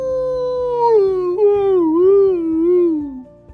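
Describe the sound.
A person mimics a sleepy dog trying to bark, the bark turning into one long, wavering, howl-like yawn that dips and rises in pitch before trailing off. The voice is fairly loud, with no talking.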